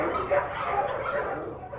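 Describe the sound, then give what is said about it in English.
Several dogs bark together in a dense, overlapping chorus, a steady stream of woofs and yips with no gaps and no voices. “Once before, people had worked on the roof and come down through the trapdoor to a chorus of woof.”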